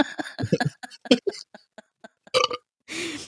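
A drawn-out burp during a Sunday morning burping and farting competition breaks into several short croaky pulses, followed by a breathy, noisy exhale at the end. No one talks over it.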